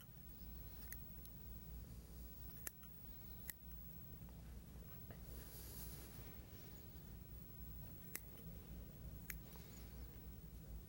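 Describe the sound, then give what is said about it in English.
Scissors snip through rabbit fur while making an incision during a dissection, in a few quiet, irregularly spaced crisp clicks, over a steady low background hum with no voices. “it's a good idea when you're making this incision not to go through the fascial layers beneath”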